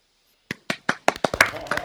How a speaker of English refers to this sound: A round of applause.